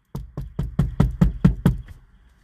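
Eight firm knocks on a door in a quick, steady rhythm, fairly loud, with no voices, then quiet.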